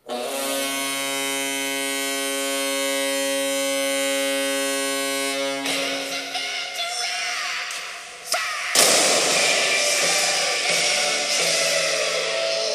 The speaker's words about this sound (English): It's time to fire the cannon, and it's time to put on your jackets.